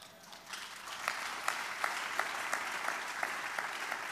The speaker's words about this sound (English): I can feel your clap right now.